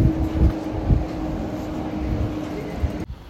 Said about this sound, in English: Next to a tram full of the commute. It's fucking packed.